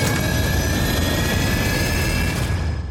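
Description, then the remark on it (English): A loud airplane engine roars steadily with a high whine running through it, a dense unbroken wall of noise that tapers slightly at the very end, as the plane takes off with Cruise clinging to its side in a film scene directed by Christopher McQuarrie. No voices. “And you just see the land drop away beneath him as the plane takes off.”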